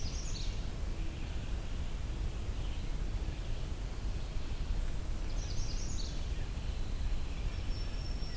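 A magnolia warbler sings short, high whistled phrases, repeated a couple of times over a steady hiss of wind or rustling background noise.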